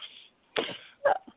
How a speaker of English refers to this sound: Sorry, I was coughing and sneezing again.